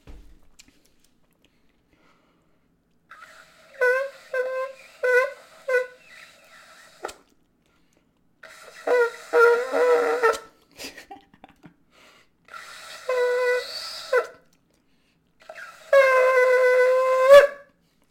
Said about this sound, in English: Okay, so that one's a little smaller, still a little hard to play. We'll get a larger ram's horn out. And you'll see it's a little easier to play.